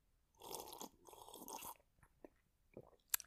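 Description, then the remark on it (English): A quiet slurping sip of whiskey lasting about a second, followed by a few soft mouth clicks and a swallow, with no talking. “With me, as always, is my special guest, my co-host, really, a small sip of whiskey. Here is what my co-host sounds like.”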